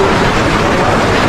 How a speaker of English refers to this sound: That's the sound of a house moving. They don't even really talk to each other. No. They just know how to move in sync.